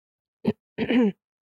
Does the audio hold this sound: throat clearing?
yes